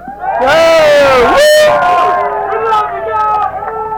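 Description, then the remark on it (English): A live crowd cheers and yells loudly, many overlapping voices whooping and shouting at once in a sustained, energetic roar that fades slightly toward the end. “Hey, guys, for Arns, make some noise.”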